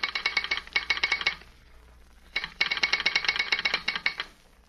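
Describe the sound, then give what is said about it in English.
A radio station call signal from someone calling the station: a harsh, rapid rattling buzz sounds in two bursts of just over a second each, split by a short pause, fairly loud with no voices. “Somebody calling the station. Wait till I answer the signal.”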